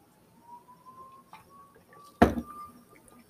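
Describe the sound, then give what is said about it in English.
Someone quietly sips water from a glass, with only faint low murmurs at first, then a single sharp, bright clink as the glass is set down, followed by near silence. “So I'm going to have a sip of water and start.”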